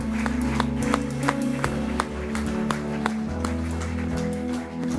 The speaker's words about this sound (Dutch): As she comes down the front. Geef een applaus.